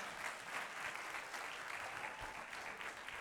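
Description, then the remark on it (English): An audience claps hands in praise to God, a dense, steady wash of many overlapping claps with no distinct rhythm, sustained evenly throughout without any voices standing out. “Give God a hand clap of praise on today.”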